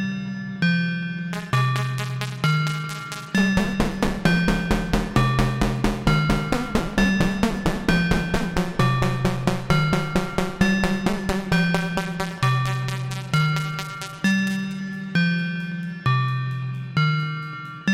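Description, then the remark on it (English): A ring modulator module from the Swamp, with nothing plugged into its input, plays a steady, repeating pattern of metallic, bell-like synth tones with clangy overtones, swelling denser and brighter through the middle before thinning out again. No one speaks. “Let's just listen to the output of the ring modulator from the swamp without anything plugged in.”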